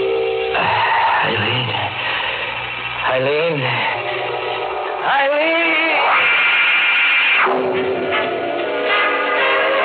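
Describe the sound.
A loud radio blares continuously, its tinny, band-limited sound carrying warbling tones and a voice calling out a name over the broadcast.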